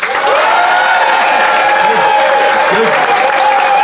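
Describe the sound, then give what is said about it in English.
A studio audience applauds steadily for a few seconds to cast a public vote, dense loud clapping throughout, with a little cheering mixed in. “beloved members of the Phoenix audience, if you think Adam and Ben, and therefore Suze, is in the right, applaud now”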